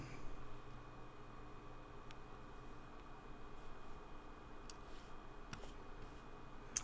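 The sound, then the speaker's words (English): A few faint, sharp computer mouse clicks, clicking on a link, spaced irregularly apart, set against a steady low background hiss with no talking. “There's a link I'm clicking.”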